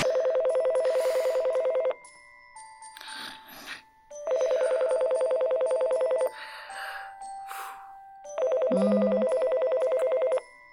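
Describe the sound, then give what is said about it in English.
A telephone rings in three long, loud trilling bursts with pauses between, a bright electronic warble; faint background sounds fill the gaps between rings. “Brr. Brr. Get the phone.”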